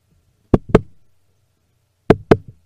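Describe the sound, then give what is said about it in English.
Two loud, booming heartbeat thumps imitated by knocking, each a quick double beat, separated by a second and a half of near silence. They evoke the heartbeats heard when the lights turn red for Finn Balor's Demon in a wrestling match against Roman Reigns. “Yeah, he's like thrusting to the heartbeats.”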